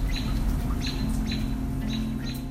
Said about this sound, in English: I'm also sending with this recording a couple things that I recorded just when I was outside. One is a bird outside my stoop.